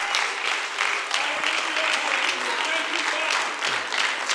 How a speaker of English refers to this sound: Amen, amen. Clap your hands as you are seated today.